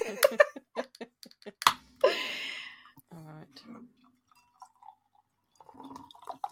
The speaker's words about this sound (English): Oh, that ASMR, I love it. Oh, pour's really nice though. Oof. I love watching it, like when I pour, so when I just poured this, it was like the head started up there and then just kind of started going down.